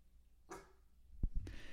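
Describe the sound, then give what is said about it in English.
A dog in a crate lets out two short barks, fairly quiet and a bit muffled, with a couple of dull thumps between them. No one speaks. “He truly woke up this morning and the first thing he did was bark.”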